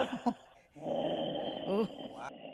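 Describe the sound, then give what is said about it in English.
A person voices a low, rumbling growl, imitating an animal, sustained for a couple of seconds after a brief vocal start, with a rising snarl near the end, fairly loud. “That's already a very good growl.”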